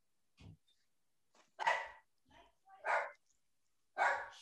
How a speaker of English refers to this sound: Is that the Amazon package my dog's going mad about?